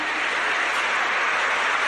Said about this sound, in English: We're now expecting Nelson Mandela to arrive, and you can hear the applause. People are standing up.